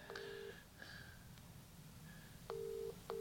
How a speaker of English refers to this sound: No, let's just see if we can ring him right now.